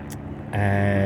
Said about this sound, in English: Hopefully they don't stay too long. Interrupting our podcast here, lads. The fuck? I think there's actually two helicopters there.